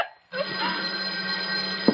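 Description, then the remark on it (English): An old-style telephone bell rings continuously and loudly after a brief silence, a steady metallic jangle that fills the rest of the moment without any voices. “You, farmer, go answer the phone.”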